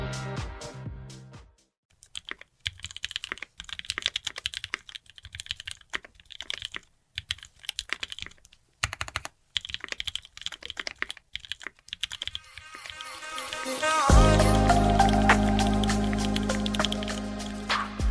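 Rapid, irregular clacking of keys on a mechanical keyboard, crisp, with brief pauses between bursts; toward the end a low, sustained hum or music swells beneath the typing.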